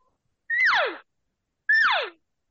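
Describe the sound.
Two imitated elk calls, cow elk sounds elongated to make a bull elk sound, each a half-second squeal that holds briefly and then slides sharply downward, separated by a pause. They are loud, with nothing else heard.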